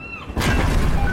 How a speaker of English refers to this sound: I'm on a cruise ship. There was an explosion. Oh my God, the ship is sinking.